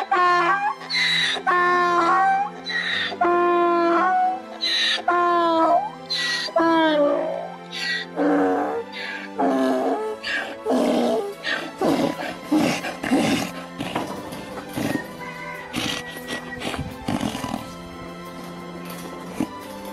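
A rescued donkey at a farm brays loudly and repeatedly on seeing the woman who rescued it, a series of harsh, wheezing hee-haw calls that rise and fall in pitch, continuing in uneven bursts for the whole stretch.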